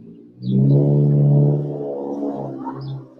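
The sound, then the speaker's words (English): A Sentra's aftermarket exhaust gives off a raspy, buzzing drone as the light turns green, holding steady and loud for about a second, then easing to a slightly softer, lower hum as it carries on. “So you may hear this little bullshit exhaust.”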